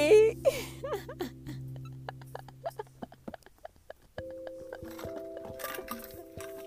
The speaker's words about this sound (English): You hear that? That's ice. Now, I fixed this water this morning at 7 o'clock this morning, and it's been sitting in my hot ass car. It was 80 degrees today, so it's been sitting in my hot-ass car, which is parked on my top garage roof.